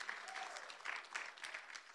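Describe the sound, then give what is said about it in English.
A church audience breaks into sustained applause as a clap offering to the Lord, a dense, steady clatter of many hands clapping, with a few scattered voices rising briefly above it. “Come on, give the Lord a great clap offering, amen.”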